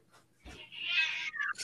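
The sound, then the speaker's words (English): A cat that wants to be let out of a room lets out one long, loud, drawn-out yowl that wavers and rises before trailing off, with no talking over it. “Do you have a cat getting murdered right now? Cat.”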